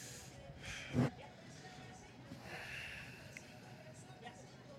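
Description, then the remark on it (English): A single sharp sniff at someone's shirt collar breaks through about a second in, followed by faint breathy rustling and soft background noise. “So collar, and then I want you to sniff here afterwards.”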